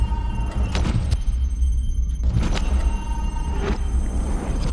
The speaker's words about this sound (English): Shall we go to the cockpit? That's as good a plan as any. It's the room next to this one, so I just open this door.